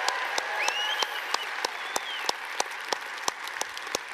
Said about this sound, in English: So let's cheer for our church family in Airdrie. Yay, Airdrie.